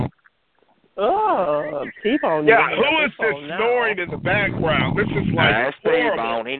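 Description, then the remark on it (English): Loud, rough snoring from someone in the background comes through a muffled, tinny phone line in a steady run of raspy, nasal snorts and drawn-out breaths with only brief gaps between them. “Who is this snoring in the background?”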